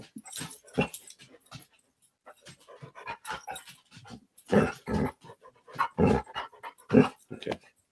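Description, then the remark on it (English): A dog pants and whimpers, a string of irregular breathy huffs and short whines that grow louder and heavier toward the end. “Apparently, my dog doesn't know the meaning of silence.”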